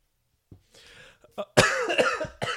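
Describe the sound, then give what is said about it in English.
A person coughs several times after choking on their own saliva: a short sputter, a strained throat-clearing, then a burst of harsh, rapid coughs. “Since I'm coughing, I guess it's time for a last soda.”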